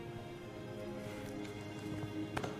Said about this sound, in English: How's the floor? She stomps her foot twice and it... It's like the clapper.